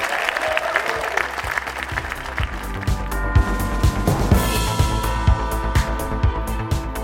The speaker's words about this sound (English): But ladies and gentlemen, a round of applause to everyone at the Duchess Theatre and Avalon for making tonight possible. All of you for coming and being such a wonderful crowd.